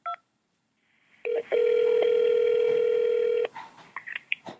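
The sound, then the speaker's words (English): A short beep, then a loud, steady telephone keypad tone that holds for about two seconds before cutting off, followed by faint clicks and line noise, on a call to the New York Times phone menu. “For Metro News, press 1. For National News, press 2.”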